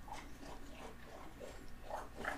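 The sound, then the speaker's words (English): A dog laps and slurps wetly, with a steady run of sloshing, smacking licks over about two seconds and no talking. “Where are we getting them dog slops on the. I feel like it's been a minute since we had some sloshing.”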